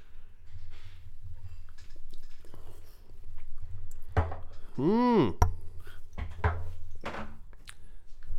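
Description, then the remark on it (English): Swallowing and wet mouth sounds as someone downs a shot of liquor, with a few sharp clunks like a glass set down and a brief voiced exhale in the middle. “Oh, that went down good.”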